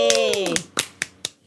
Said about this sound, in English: Well, she didn't even stick around for her applause.